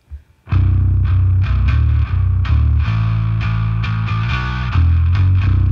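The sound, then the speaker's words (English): An electric guitar played through a Boss overdrive pedal on its own plays loud, crunchy chords, struck in a steady rhythm with thick sustained harmonics between hits. No voices. “And then this is just the overdrive by itself.”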